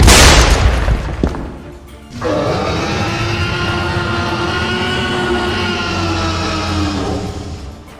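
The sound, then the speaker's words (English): A huge crashing impact of 12-foot-tall heavy metal gates, smashed off their hinges, hitting the ground in a courtyard, followed by a long, loud rumbling and grinding roar that sustains for several seconds with no voices. “smashing it off its hinges as these 12-foot-tall metal gates just collapse into the courtyard with a massive bang.”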